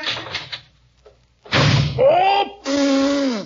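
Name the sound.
door slamming shut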